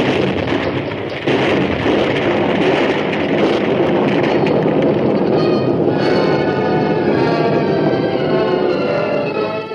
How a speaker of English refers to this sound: Sure made a big explosion. Yes. El Mundo was caught in his own trap.